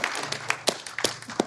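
Scattered audience applause, a steady patter of many hands with a few sharper claps standing out, fairly soft overall and with no voices over it.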